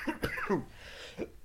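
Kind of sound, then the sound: human body sound, coughing fit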